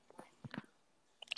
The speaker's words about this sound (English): Dude, why are you chewing on your mouth guard, dude? Sorry, I'm watching Clemson and Virginia. This dude's like going ham on his mouth guard.